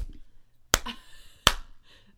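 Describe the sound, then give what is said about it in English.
A slow clap: two sharp, loud hand claps spaced about three-quarters of a second apart, each ringing out briefly before a quiet low hum returns. No one speaks. “Slip clap.”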